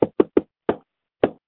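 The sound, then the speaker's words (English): Five knocks on a client's front door in a friendly rhythm: three quick raps, then two slower ones spaced apart. They sound clear, with no talking. “We're going to knock on the door. We all do that little friendly knock.”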